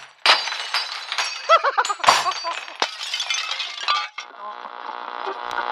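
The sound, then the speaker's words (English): Dishes being smashed with a hammer: a loud burst of repeated crashing blows and shattering crockery, bright clinking shards tumbling for several seconds, then a ringing, humming tail as the debris settles. “Well, finally, the solution is here. All the way from America. Here it is, the hammer.”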